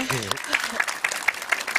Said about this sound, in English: It deserves a round of applause, I think.